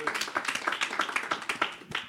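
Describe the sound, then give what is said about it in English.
A crowd claps steadily, dense overlapping hand claps forming a continuous, moderately loud patter of sharp bright slaps with no voices standing out. “This is where you clap.”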